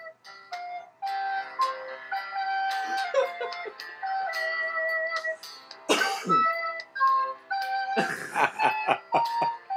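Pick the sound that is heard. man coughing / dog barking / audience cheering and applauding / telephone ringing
man coughing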